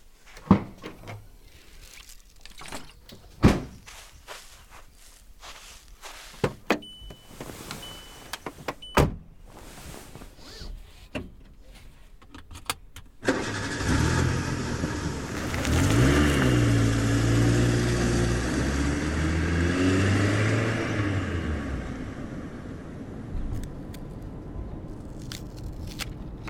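A few sharp clunks and rattles, like a car door shutting, then an engine roars to life and keeps running loudly as the car pulls away and revs through its gears.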